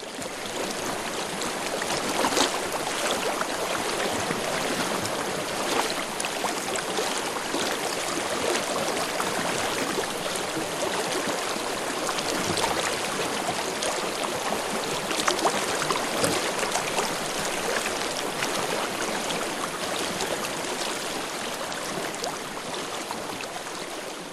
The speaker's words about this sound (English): A river is born. It gathers sediment and other debris, carving out valleys, reshaping mountains.